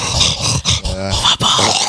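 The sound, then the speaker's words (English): A dog named Cookie breathes heavily and loudly into a microphone in rough, noisy huffs, with two brief pauses and a short whining or growling tone in the middle; no one speaks. “Yeah, no heavy breathing on that thing, Cookie.”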